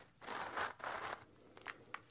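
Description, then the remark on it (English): A small zipper on the back of a purse is pulled open in two quick raspy strokes, followed by a few soft clicks and rustles. The sound is quiet, with no talking. “In the back, you get a little zipper”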